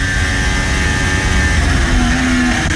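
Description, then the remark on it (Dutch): A Formula 1 car engine, driven by Valtteri Bottas during a race, screams at high revs, loud, holding a steady high-pitched whine that rises slightly near the end as it shifts through fifth, sixth and seventh gear, with no talking. “Op het geluid van Valtteri Bottas.”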